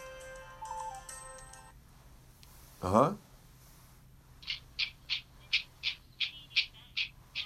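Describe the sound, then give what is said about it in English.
A phone rings with a short melodic electronic tune, then after a brief pause a steady series of about ten sharp, evenly spaced beeping rings, clear over a faint background hum. “No matter what kind of phone you have, Rabbi, they'll get you.”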